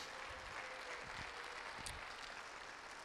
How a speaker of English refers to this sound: One more round of applause for our kids.